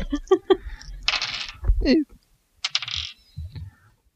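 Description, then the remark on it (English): Large thirty-sided dice (D30s) clatter and rattle across a hard tabletop in a few quick bursts of sharp clicks, fairly loud, with people talking briefly in between. “I don't even have dice these big out. No. D30s? Yes, D30s.”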